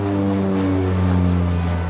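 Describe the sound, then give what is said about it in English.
A loud, steady engine roar with a deep droning hum, like a propeller airplane passing overhead, holding constant throughout with no voices. “An airplane roared overhead.”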